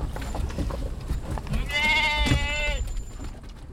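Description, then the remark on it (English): A sheep inside a Chrysler minivan carrying 12 sheep and 2 people lets out one drawn-out, wavering bleat lasting about a second, over a steady low rumble and some faint background shuffling. “Once we got going, it was remarkably quiet considering there were 12 sheep and 2 humans in a Chrysler minivan.”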